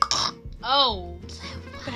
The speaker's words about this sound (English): It was not a burp. It was like a croak. It did kind of sound like a burp. Though. Did it? I wasn't burping. It was a croak.